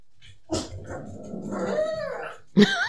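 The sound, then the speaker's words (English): A dog out back lets out a sharp bark, growls low and steadily with a rising, whiny edge for about a second, then fires off another loud, abrupt bark. “There must be a dog out back or something.”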